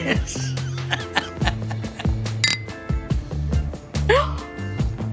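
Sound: clinking glasses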